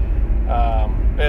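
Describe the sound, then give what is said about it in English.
Steady, loud low rumble of road noise inside a moving car, with brief bursts of a voice over it. “Finally getting around to it, doing it in the car”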